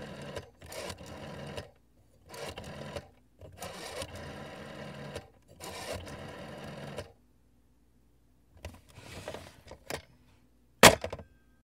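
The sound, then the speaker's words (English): A rotary phone dial whirs back repeatedly in a series of mechanical ratcheting bursts separated by short pauses, then a few softer rattles and one sharp, loud clack at the end. No one speaks. “one of the staples, one of the things that I will associate with my grandparents' tiny little apartment they had, you know, my mom's entire life, their rotary phone.”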